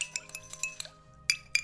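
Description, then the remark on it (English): Cups clink together while tea is being made, in a quick, irregular run of bright, ringing taps, then pause before two sharper clinks. The sounds are fairly quiet, with a faint low hum underneath and no voices. “Oh, I make us a brew. I'm parched.”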